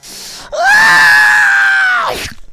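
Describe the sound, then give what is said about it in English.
A voice lets out one long, loud, shrill shriek held steady for about a second and a half before cutting off, imitating a piercing scream, unaccompanied. “somewhere in the distance as you're preparing for this, you hear echoing on the wind the shrill shrieking of your little pal.”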